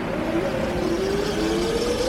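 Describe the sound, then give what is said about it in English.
A car engine revs steadily, its pitch climbing as the vehicle draws closer, loud and continuous over a constant rumble with no voices. “It's not like a car's just going to come along and pick us up.”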